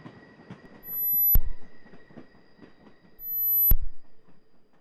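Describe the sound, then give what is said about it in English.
A train rumbles steadily along the rails with a faint high whine, as two heavy swelling thumps roll past about two seconds apart, fairly loud, with no voices. “Misha is sitting on the train and the person next to him disappears.”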